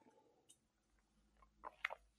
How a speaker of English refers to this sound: Hold on, let me get a sip.